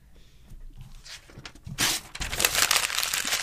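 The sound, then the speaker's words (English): Paper pages rustle and crinkle, starting softly and then growing into a louder, continuous run of crackling and shuffling for the last couple of seconds, with no voices. “Shuffling papes over there?”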